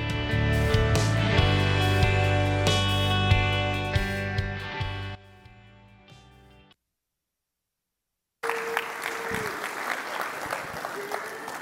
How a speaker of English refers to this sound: And applause.